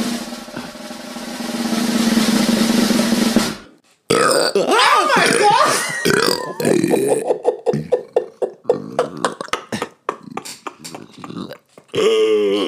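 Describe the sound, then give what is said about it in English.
A long, loud, rumbling burp done on command, with a steady low pitch, lasts several seconds, then breaks off into laughter and excited voices with short bursts of noise. “I can burp really loud on command too.”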